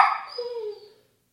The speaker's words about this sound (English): what are you barking for? Oh, may I speak for a while?